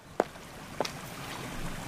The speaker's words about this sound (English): We've come now to a small stream, and as it has been raining really hard for the last few days, it's running quite fast, but not so deep as to stop us crossing it.